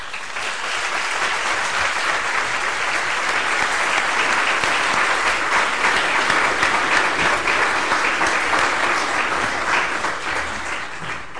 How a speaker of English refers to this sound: Well, thank you both for, as the applause indicates, I mean, two brilliant presentations